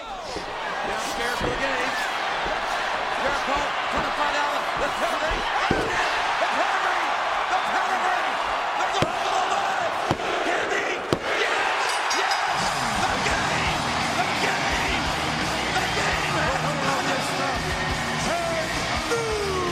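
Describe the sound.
A steady wash of wrestling arena crowd noise at WrestleMania 18, during the event's last match, loud but flat and subdued, with scattered yells and a few sharp thuds from the ring cutting through. Voices murmur underneath throughout.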